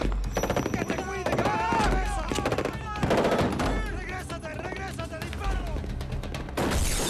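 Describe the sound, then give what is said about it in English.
Loud shotgun blasts, fired through the back of a car, crack out again and again in rapid bursts over several seconds, with voices shouting among the gunfire and a final heavy blast at the end. “Shotgun through the back of the car.”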